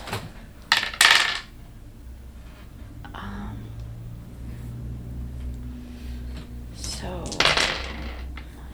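Dice clatter across a hard tabletop in two short rattling bursts, one near the start and another near the end, fairly crisp over a low steady background hum, rolled for a luck check in a tabletop game.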